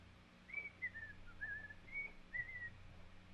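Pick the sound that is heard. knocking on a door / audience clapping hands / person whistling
person whistling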